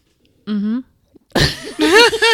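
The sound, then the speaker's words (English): A loud, drawn-out yawn, breathy and voiced, its pitch wavering and swooping over about a second, after a brief, higher hum-like vocal sound. “I'm sorry, I yawned”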